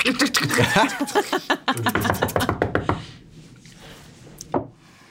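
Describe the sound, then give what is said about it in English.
A rapid, loud flurry of many knocks on a door, drumming quickly for a few seconds with some chuckling mixed in, then quiet apart from one last sharp knock. “We knock on the door? Yeah, all eight legs.”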